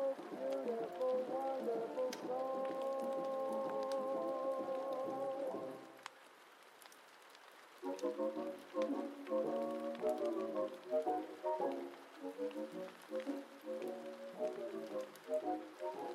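Steady heavy rain hisses throughout, beneath muffled old-time music playing from another room; the music briefly drops out partway through, leaving the rain's constant wash before the tune returns.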